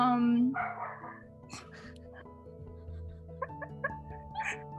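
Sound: dog barking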